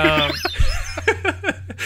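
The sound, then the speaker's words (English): A person mimics a bird's tweet as a pun on Twitter tweets, with a quick series of short, chirpy vocal bursts, fairly loud, with no other talking around them. “speaking of things we've tweeted out, if you only listen to us and don't follow us on Twitter, also tweets, bird noise.”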